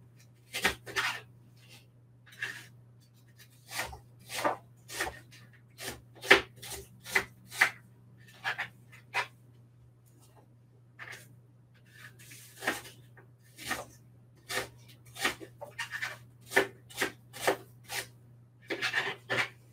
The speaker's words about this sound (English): All right, the second one has been peeled, so I'm just gonna take the core out of this one too and dice it, small little pieces.